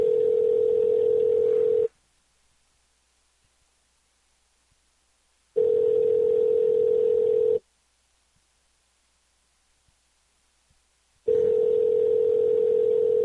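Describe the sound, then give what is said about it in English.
A telephone ringback tone on an outgoing call to a business, a steady electronic hum in two-second bursts separated by about four seconds of silence, sounding three times clearly with no voices. “They're letting it ring 20 times.”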